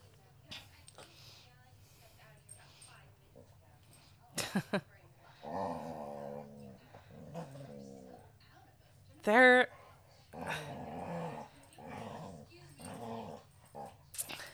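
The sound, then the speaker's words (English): A dog growls in several low, rumbling stretches, broken by a sudden sharper yelp-like burst midway, moderately loud, with faint voices in the background. “No, not tonight, guys. No growl growl.”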